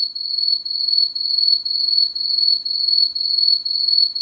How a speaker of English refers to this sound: Okay, exactly. Exactly. Crickets. The Crickets. Silence is deafening.